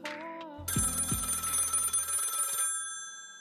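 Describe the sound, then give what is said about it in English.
A telephone bell rings loudly, a bright metallic trill lasting about two seconds, then fading out with no voices present. “There's a phone call for you, bro.”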